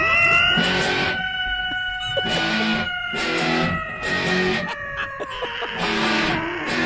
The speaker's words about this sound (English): This is a guy who put a microphone up to a cat. Oh, really? Decided to add a little guitar to it, and this is what you get.